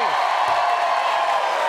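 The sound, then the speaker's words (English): A late-night TV studio audience claps and cheers as actor Charlize Theron joins the show, a dense, steady wash of applause with whoops and crowd noise rising over it for the whole stretch. “Wow, you guys clap hard.”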